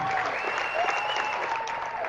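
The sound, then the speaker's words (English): A basketball crowd applauds steadily as player Quinn Johnson heads to the bench. The dense wash of clapping holds at an even, fairly loud level for about two seconds, with a few faint whistles riding over it. “And listen to this crowd here. Give him a hand.”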